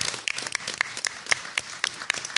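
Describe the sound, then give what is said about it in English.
A crowd applauds a man who did the audiovisual work for the event, many hands clapping in a dense, steady patter with a few sharper claps standing out, at moderate loudness and with no voices over it. “Oh, so he definitely deserves a round of applause for killing him.”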